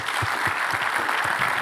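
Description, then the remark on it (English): A crowd gives a speaker a round of applause, many hands clapping in a dense, sustained patter that fills the room at a moderate level, with no voices standing out. “If we can give Chris a round of applause.”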